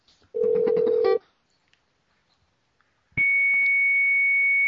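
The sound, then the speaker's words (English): A phone being dialed to call someone back: a short, lower electronic tone, a pause of about two seconds, then a higher, steady beep that holds to the end. Fairly loud, with no voices. “Call him back and let me just ask him where the fuck Reggie is.”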